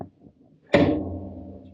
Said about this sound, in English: Are you pulling levers to create Frankenstein over there? I knocked over my speaker.